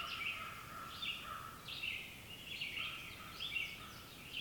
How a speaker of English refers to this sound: The vast majority of birdsong here is that of the red-eyed vireo. With its song that sounds like a long string of short phrases that can sound like it's saying its name, vireo, vireo, vireo.